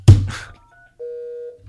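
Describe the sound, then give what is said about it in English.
A soft thump is followed by a pair of steady electronic phone tones, a faint high beep and then a louder sustained tone lasting about half a second, with no talking. “Is that your phone?”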